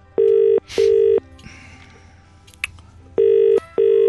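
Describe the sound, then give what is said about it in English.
Phone-line ringing tone heard while calling back a caller who dropped off the line: two crisp double buzzes separated by a quiet gap with faint line noise, loud, with no talking. “Let's find caller back. Hang on a second.”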